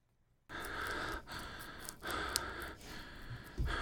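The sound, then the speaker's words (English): Loud, heavy breathing into a microphone, about four long breaths in a steady rhythm with brief pauses between, breathy, after a moment of silence. “Because I'm like, I know I can hear myself breathing on my mic sometimes because how good it is, but I was like playing,”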